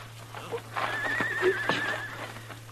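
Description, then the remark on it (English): A horse lets out a shrill, wavering whinny lasting about a second, with a few hoof clops around it, set against a steady low hum. “I'll take my horse then”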